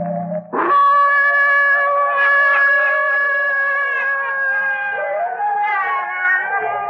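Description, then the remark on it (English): A great cross-breed hound, one of a pack guarding a dilapidated old house, lets out a long, loud, sustained howl in the early evening that wavers slightly in pitch and carries on for several seconds, with no talking. “In the dim half-light, two figures, led by one of the hounds, approach the house.”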